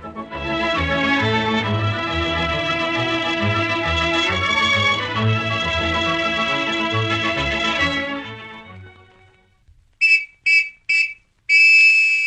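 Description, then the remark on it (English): After several seconds of orchestral music fade out, a shrill Sergeant Preston Mounted Police whistle sounds a hurry-up signal: three quick, sharp blasts followed by one longer blast. “Did you get that hurry-up signal, fellas and girls?”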